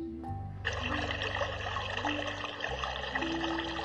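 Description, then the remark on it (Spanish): Water from a tank gushes steadily into a bucket, a continuous splashing pour that starts abruptly and runs without pause, with a low hollow resonance beneath the rushing stream. “Llené el balde con agua”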